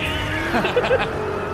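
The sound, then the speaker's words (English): A Dodge Charger car engine drones steadily at moderate volume in a commercial, with a brief revving swell in the middle of the short stretch, mixed with other background noise. “That's Vin Diesel, just car sounds.”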